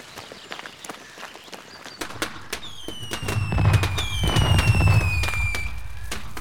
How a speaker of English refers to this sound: Oh man, I love fireworks! And there comes the police to see what the fuss is.